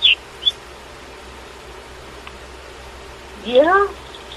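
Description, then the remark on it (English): A seagull lets out one short, harsh squawk near the end, preceded by a couple of faint, brief chirps, all over a steady low background hum. “You down for some seagull fun?”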